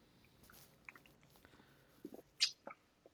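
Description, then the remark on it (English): Sipping a Dogfish Head Hazy-O IPA beer, 7.1% alcohol: a few quiet wet mouth sounds, then a short sharp slurp followed by soft gulping swallows, with no talking. “Yeah, and I'll take a good sip.”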